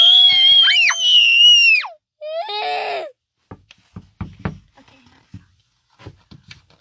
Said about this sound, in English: Who's knocking on the door? It's just Aardvark, said Porcupine.